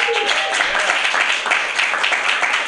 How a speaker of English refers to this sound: So we're going to have a great time. So round of applause for the great show that you're about to see.